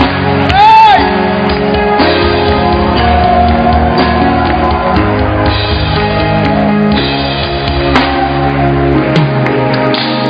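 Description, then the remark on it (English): An audience claps and cheers in a loud, steady wash of noise, with a high rising-and-falling whoop near the start and scattered shouts throughout. “Your clapping is not simple.”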